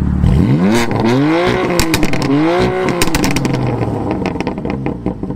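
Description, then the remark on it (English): A BMW M4 Competition engine revs hard a couple of times while parked on a sunny day, its pitch sweeping up and falling back, followed by sharp, loud exhaust pops and crackles. “Jump forward this clip to when I'm parked up and I'll give you some revs.”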